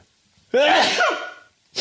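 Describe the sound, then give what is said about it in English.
A single loud sneeze bursts out after a quiet moment, a sharp airy explosion with a brief voiced edge, followed by silence and the start of another breathy sound. “Hold on, I gotta sneeze, guys.”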